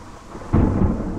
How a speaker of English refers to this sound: On and on, the rain will fall. On and on, the rain will fall.